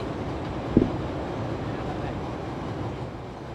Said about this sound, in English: I will say, train break. A brown line break brought to you by the CTA of Chicago. Still running on a regular schedule, obviously.